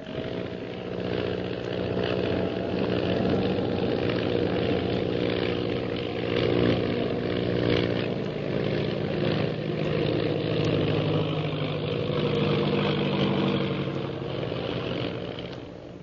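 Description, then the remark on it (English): A propeller plane engine drones steadily and loudly throughout as Shanghai Lil stunt-flies her plane. Its harmonic buzz rises and falls slightly as the aircraft maneuvers, with no voices present. “Meanwhile, Shanghai Lil continues her attempt to escape her pursuer by stunting her plane.”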